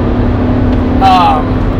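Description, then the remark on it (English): Steady, loud low rumble of a car cruising at speed on a three-lane highway in traffic, road and engine noise droning evenly throughout, with a brief tonal voice-like sound rising midway. “People in the left lane doing the speed limit. What did we talk about with this? There's three lanes of traffic.”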